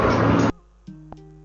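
A single loud, noisy sneeze burst cuts off abruptly after half a second, leaving a quiet stretch with faint low tones and a brief soft click.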